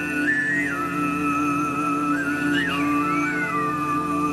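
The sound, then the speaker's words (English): Tuvan throat singing by a male performer: a steady, buzzing low drone with a bright guttural whistling overtone gliding up and down above it in a slow melody, continuous and fairly loud with no talking. “Tuvon throat singing, guys. This is like the Mongolian shit, right?”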